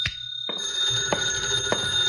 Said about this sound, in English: My phone was ringing when I unlocked the door.